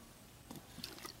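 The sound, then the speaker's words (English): Someone takes a quick sip from a plastic bottle of water: a few soft gulps and faint sloshing over about a second, with no talking. “Every time I take a drink out of it, it gets a little emptier.”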